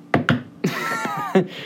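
Two people knock on wood: two quick, hollow knocks in rapid succession, followed by a voice talking or humming, with one more soft thump partway through.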